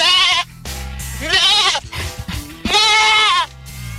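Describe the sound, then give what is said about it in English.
Three loud goat bleats ring out one after another, each a wavering, nasal cry lasting about half a second, separated by short pauses with faint rustling underneath. “Students would assume poses like the downward dog, while small goats would crawl around them and often on top of them, the participants,”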